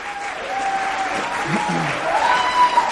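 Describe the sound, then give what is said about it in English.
A church audience on its feet applauds God in worship, a dense, continuous wash of applause, with scattered voices calling out and a few brief tonal sounds rising above the noise. “On your feet, applaud God.”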